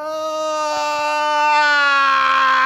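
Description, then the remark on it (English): A voice imitates a child's whine as one long, steady wailing note that swells louder and slightly higher toward the end, like a siren building. No one talks over it. “Either way, the kid's not getting what he wants, and so he starts whining. And you can hear it like a siren from a fire engine coming down the street.”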